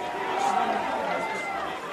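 A large home stadium crowd of Chargers fans at an American football game against the Eagles boos loudly and steadily after a pass interference flag against the Chargers, a dense, sustained roar of disapproval that fills the whole moment without letting up.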